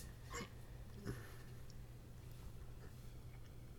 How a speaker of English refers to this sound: Hiccups? Yeah, I'm fine.